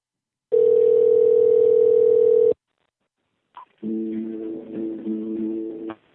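A telephone ringback tone sounds through the line as one long, steady two-second burst, then a pause and a click before a different warbling electronic tone plays. No one speaks.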